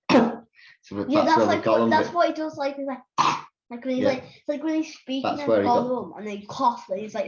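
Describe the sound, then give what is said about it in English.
A voice imitates a cat hacking up a hairball, a run of rough, throaty gagging and retching bursts with brief gaps, fairly loud, with no other sounds around it. “You think about a cat when it coughs, goes.”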